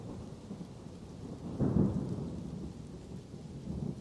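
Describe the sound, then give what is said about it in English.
Low thunder rumbles through steady rainfall, swelling into a deeper roll midway before easing back into the constant hiss of rain. No voices. “you look over towards where the thunder is coming from.”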